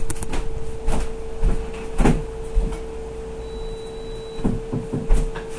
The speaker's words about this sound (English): My dehumidifier buzzes. Panasonic's a good company, but not as good as one had hoped. But my buzzing dehumidifier alerted me.